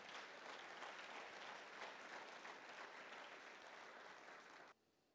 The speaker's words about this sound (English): God, I'm going to give God a clap offering.